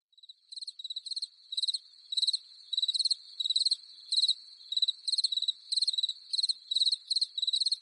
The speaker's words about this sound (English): And yes, as you might have guessed, those crickets where we would normally hear Tracy's voice means that she's not going to be with us for this show.